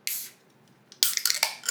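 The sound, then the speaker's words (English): Two beer cans, one a Hamilton local beer, are cracked open one after another, each with a sharp pop and a bright fizzing hiss; the second hiss lasts longer, with small clicks and crackles, and no talking. “But anyway, let's go. Let's crack them.”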